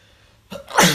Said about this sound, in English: Oh, yeah. That was one good sneeze.